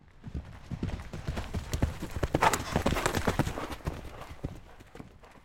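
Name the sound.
horse hooves clip-clopping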